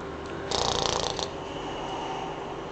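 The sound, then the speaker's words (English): A single rasping snore of a sleeping woman comes from behind her door, heard with an ear pressed to it: a raspy fluttering inhale lasting under a second, then fading into a steady low hum. No one speaks. “I think she's sleeping.”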